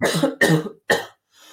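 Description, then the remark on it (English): Three harsh, rapid coughs in a row after something went down the wrong way, loud and broad, the last one short, followed by a faint breathy rasp as the cougher recovers. “God, something's gone down the wrong hole.”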